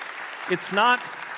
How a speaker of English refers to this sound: I'll wait here until you praise the Lord with your applause.